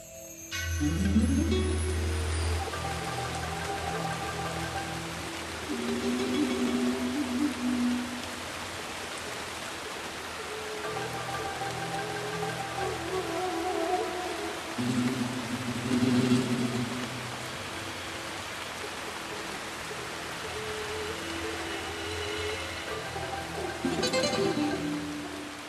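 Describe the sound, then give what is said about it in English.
Heavy rainforest rain pours down in a dense, steady hiss that fills the whole scene, with low sustained musical tones swelling and fading underneath. “So the rain is easing off now, but boy, was that some rain.”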